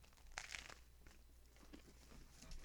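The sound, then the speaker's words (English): A sharp, crackly bite into crusty, freshly baked bakery bread near the microphone, followed by a stretch of softer, irregular crunching as it is chewed, with no talking. “Hold on, I'm taking one more bite before I'm like chewing all in your ear.”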